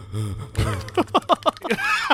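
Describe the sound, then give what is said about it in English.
A voice imitates heavy, laboured breathing: a series of rough, rhythmic huffs and pants, about half a dozen quick breaths rising and falling, fairly loud, with no words spoken. “You just gave us heavy breathing. Just laboured.”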